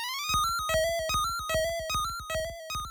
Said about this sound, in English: It's just to sort of get that trill sound, you know, they're alternating notes quickly, but there's also, like, a vibrato slapped onto it, and they do it really fast. So that's how you get this weird, pitch-bendy trill vibrato effect